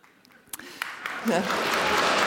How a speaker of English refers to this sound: Fact-checking gets a round of applause, I like that.